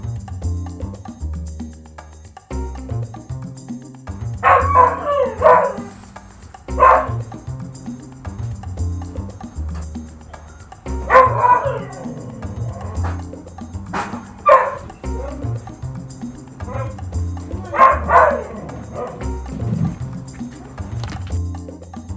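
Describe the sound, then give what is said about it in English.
A dog barks loudly in short bursts, a few sharp barks at a time with pauses between, over a steady low rumbling background. “Oh my gosh, that darn dog scared the crap out of me.”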